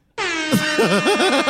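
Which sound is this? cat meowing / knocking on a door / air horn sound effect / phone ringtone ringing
air horn sound effect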